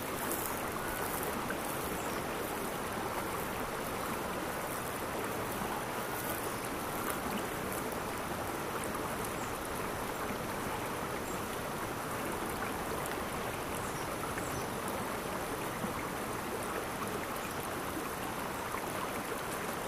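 flowing river water

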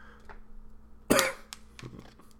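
coughing

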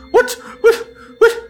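dog barking

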